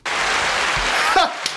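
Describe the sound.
A short burst of a steady, dense applause sound effect triggered by a button, many hands clapping at an even level throughout, with a brief voice cutting in near the end.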